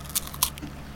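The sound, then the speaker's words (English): Crisp crunching as a chocolate wafer bar with puffed rice inside is bitten, with two or three sharp crackly bursts in quick succession over a low background hum. “Which gets lost when you crunch down the wafer.”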